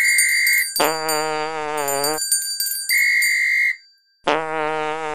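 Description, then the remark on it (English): Two loud, buzzy fart sound effects, each lasting about a second, alternate with short, steady high-pitched whistle tones. No one speaks. “I'll give you bells and whistles and a fart noise.”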